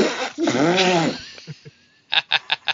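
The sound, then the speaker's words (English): A woman blows a loud, buzzy raspberry with her mouth imitating a fart, wobbling in pitch for about a second, then a few short sputtering puffs follow in a quick run. “I'm a girl, I can't make fart noises very well, but that was my thoughts.”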